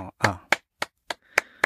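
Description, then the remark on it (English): Six sharp hand claps in a steady, even rhythm, each a crisp slap with a quick decay. A brief murmur of voice blends with the first clap. “Do you, when you clap, mm-hmm. which hand?”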